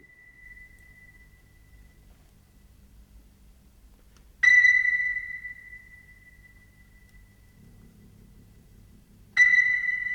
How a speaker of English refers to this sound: Goes on for a while like this. Yeah. It does. Sonar.